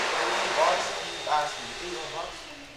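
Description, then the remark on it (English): An electric hand dryer in a high school locker room roars with a steady, loud airy whoosh throughout, while people's voices briefly cut through the noise. “There's like a fucking hand dryer going off. Well, enjoy the hand dryer.”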